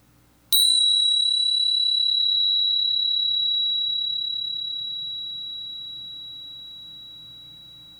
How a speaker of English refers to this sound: I'm going to ring my bell once to start and once to end.